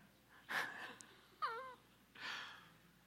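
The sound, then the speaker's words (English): An audience member snoring faintly: three rasping, breathy snorts spaced about a second apart, the middle one with a short wavering, whiny vocal tone, and no talking. “I don't mind the snoring. All right. Everybody hear that snoring?”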